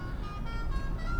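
A steady low rumble of a car engine driving at about 10 miles an hour in slow traffic, with a faint sustained tonal hum above it and surrounding road noise. No one speaks.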